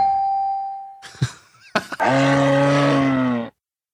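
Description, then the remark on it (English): A moose gives a single drawn-out, low bellowing moan lasting over a second, loud, after a faint steady tone and a couple of brief knocks. No one speaks. “That is a moose.”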